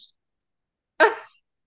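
A single short snoring sound effect, a loud, breathy rasp lasting under half a second that fades quickly, heard alone with silence around it and no talking.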